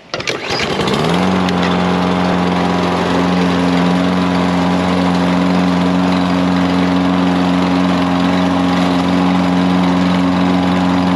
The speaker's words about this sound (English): The next thing I'm going to do is start my lawn mower up. Start up. I need to start it up. And to do that, I need to pull on the cord.